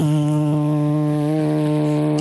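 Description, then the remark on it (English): A voice imitates the engine of a tuna boat on a cruise around the harbor: a steady, low droning hum held for about two seconds, rich in buzzing overtones with slight pulsing, fairly loud and unbroken before cutting off. “And so it turned out that this cruise around the harbor was like a tuna boat, okay? And you just hear the engine just...”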